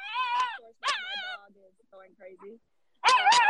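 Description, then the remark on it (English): A feisty 10-pound male dog gives a few high, sharp yapping barks in bursts, with softer whiny whimpers in between, fairly loud. “That's what you get when you have a feisty 10-pound dog.”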